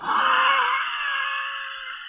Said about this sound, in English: Did you hear a horse? Horse. I think I just heard a horse.